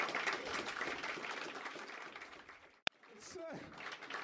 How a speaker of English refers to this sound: But why are you applauding happiness?